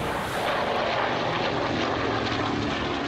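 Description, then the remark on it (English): Propeller engines of Doolittle's B-25 bomber, Raider 1, roar loudly and steadily as it thunders past the superstructure of the carrier Hornet on April 18, 1942, a dense, rumbling drone with a gritty mechanical texture and no voices, holding at full strength throughout. “"He'll never make it," some anonymous sailor shouted as Raider 1 thundered past Hornet's superstructure, its right wing missing the carrier's island by about 6 feet.”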